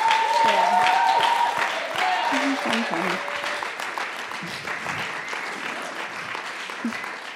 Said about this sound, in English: Okay, you guys need to give this crew a massive round of applause because...